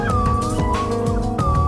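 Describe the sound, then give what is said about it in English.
Several slide whistles play at once, their bright, steady tones gliding up and down in pitch in a loud, continuous layered wail with no talking. “That's what they call the slide whistles.”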